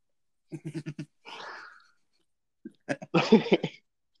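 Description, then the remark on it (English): A fit of muffled coughing into an armpit: a quick run of short hacks, a breathy rasp, then a second louder cluster of coughs, with no talking. “If you want to make it in this town, you better cough into your armpit.”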